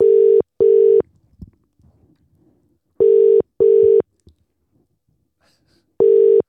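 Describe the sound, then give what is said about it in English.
A phone ringback tone on an outgoing call sounds loud and clear in a repeating double-burst pattern, two short rings then a pause, cycling about every three seconds, with faint rustling between the rings. “All right, let's see if he answers. It's ringing.”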